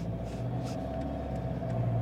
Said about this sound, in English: Sorry, whenever I'm doing a podcast and I'm recording in a car while I'm driving, you're going to hear about the driving conditions. So I'm in my dad's 150 Prado, KDJ 150. Very nice vehicle.